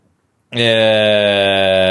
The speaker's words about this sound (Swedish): Ugnen piper.